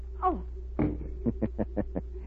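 A gun is knocked out of a woman's hands: a brief falling cry, then a solid thump and a quick run of five evenly spaced knocks, moderately loud over a steady low hum.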